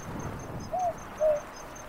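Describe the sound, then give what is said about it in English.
A southern boobook owl calls its two-note hoot, the second note a little lower, sounding softly over a steady background hiss and a regular high-pitched insect chirping. “That's a boobook. It's a type of owl, not a night parrot.”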